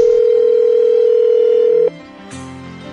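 A telephone dial tone hums at one steady, mid-pitched note for about two seconds as a call is placed, then breaks off into quieter, shifting electronic tones with no one speaking.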